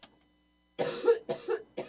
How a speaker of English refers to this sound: I'm going to have a coughing thing. Here we go. Hang on. Pardon me.